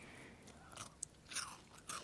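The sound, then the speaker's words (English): Crisp biting into a chocolate peanut butter Girl Scout cookie (Tagalong), followed by a few wet, crunchy chews in an irregular rhythm, with short bursts of crackle and no talking. “Okay, try that one. I love chocolate. That's the tag along, chocolate peanut butter.”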